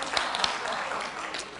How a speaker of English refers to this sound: So if you're here for the first time, can you raise your hand? We can just clap for y'all.